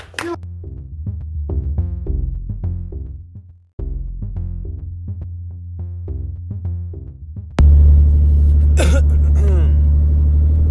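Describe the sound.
A voice imitates a car engine with pulsing, throaty low rumbles, then swells into a loud, steady engine drone with rough, noisy texture for the last few seconds.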